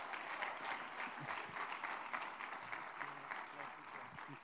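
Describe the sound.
An audience claps steadily, a dense, sustained wash of applause that holds an even level for several seconds, with faint voices mixed underneath.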